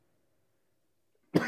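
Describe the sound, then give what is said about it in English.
A single sharp cough bursts out after a stretch of near silence, loud and raspy, cut off right at the end. “And I do have a cough drop in my cough.”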